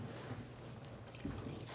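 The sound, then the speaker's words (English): A soft, steady stream of coffee being poured, a continuous low trickling wash with a slight swell near the end, quiet and without any voices. “and the coffee is being poured, and I'm so excited to drink it.”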